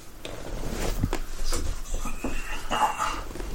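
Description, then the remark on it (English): A dog on the floor whines, wanting her belly rubbed: a few high, drawn-out whimpers and a short yip over a low background rumble, with no one speaking. “Sorry, the dog on the floor, wanting her belly rubbed.”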